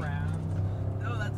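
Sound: loud engine running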